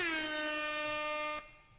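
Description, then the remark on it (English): A single loud, sustained air horn blast rings out for over a second with a bright, brassy tone, then cuts off abruptly. No one speaks over it. “Air horn time.”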